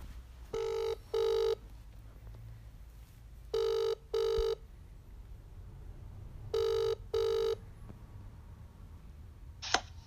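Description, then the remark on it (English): A phone line ringing out with three double rings, each a pair of short electronic tones spaced a few seconds apart over a faint background hum, followed by a brief click as the call connects; a caller is phoning a man while pretending to work for Airbnb. “So I'm going to call him up and... yeah, pretend that I work for Airbnb and we'll just see his number passed on.”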